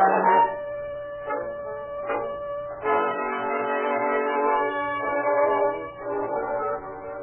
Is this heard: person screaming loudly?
no